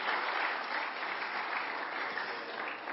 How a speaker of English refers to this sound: Clap your hands if you agree.